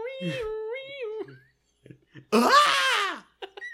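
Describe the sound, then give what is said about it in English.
Someone vocally imitates a Wilhelm scream: a held, wavering tone, a brief pause, then a loud, strained cry that slides downward in pitch, ending with a few short breathy bursts. “That was my fake Wilhelm scream.”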